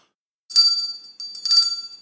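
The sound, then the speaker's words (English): A small bell is rung on a show because an email mentioned Lancero: two bursts of a bright, high metallic jingle with a steady ringing tone that carries between shakes, fairly loud and with no voices. “It mentions Lancero at least two times, and you didn't ring the bell.”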